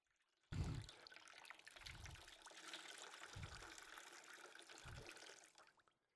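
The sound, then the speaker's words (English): Water sloshing and trickling as a towel is dipped in water and wrung out, a steady splashy stream broken by four soft, regular low plunges, ending abruptly after several seconds. “putting the towel in the water and wringing out the water and washing foot by foot those dirty, callous feet of the ones he expected to serve.”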